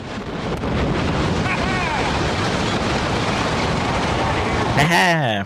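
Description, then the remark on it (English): A dense, continuous roar of dust and debris raining down after the World Trade Center collapse fills the scene, loud and unbroken, with faint voices under it and a louder voice cutting in near the end. “Yeah, and you can hear that at the end where you can hear the dust coming down.”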